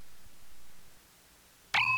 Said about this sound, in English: There's the bell that calls class to order, Quiz Kids, and let's have your attention for question number one.